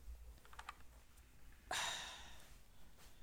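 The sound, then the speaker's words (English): A few soft, quick clicks on a computer keyboard, followed by a sudden louder burst of rushing noise that slowly fades. No one speaks. “Let me turn off my keyboard.”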